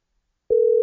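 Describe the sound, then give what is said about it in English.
A phone line rings during a call to a woman, heard as a steady electronic ringback tone that begins after a moment of silence and holds clear and even to the end, with no one talking. “We'll see if she answers the phone. Okay, hold on. One ring.”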